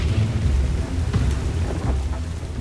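A steady rain hiss with a deep, continuous rumble of thunder rolling underneath, a few brief sharper crackles breaking through the downpour.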